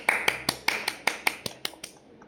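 A brief round of applause: about a dozen crisp, evenly spaced claps from what sounds like a single person close by, steady at first and then tapering off into quiet.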